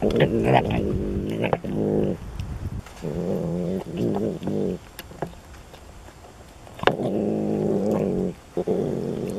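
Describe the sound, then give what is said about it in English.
A bobcat vocalizes in four loud, rough bursts of low, rumbling growls, each rising and falling like an engine revving, with brief pauses between them and no talking. “which cue the sound of a bobcat”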